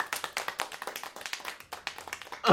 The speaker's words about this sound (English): Does applause mean I should do more?